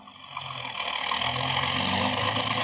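car engine running

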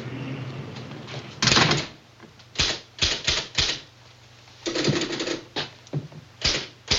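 typing on a typewriter

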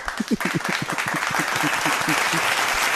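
round of applause

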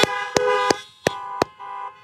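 car horns honking

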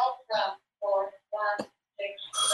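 phones ringing

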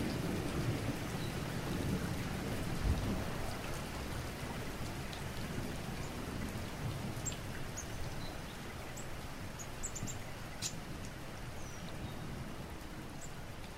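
rain falling

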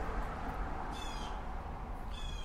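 birds calling

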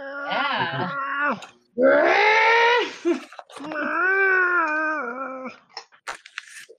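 cat yowling loudly

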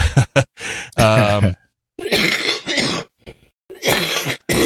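cough and throat clearing

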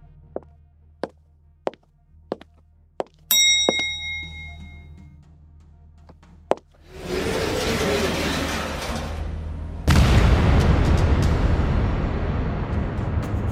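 explosion

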